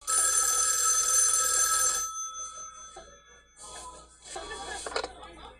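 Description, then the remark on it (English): A telephone bell rings loudly and steadily for about two seconds in a film scene where young women are winding down a Christmas party, then cuts off as Jess, played by Olivia Hussey, picks up, followed by quieter rustling and faint voices with a brief clatter near the end. “While this creep who we have yet to see is hiding out upstairs, the young women are winding down a Christmas party until the phone rings.”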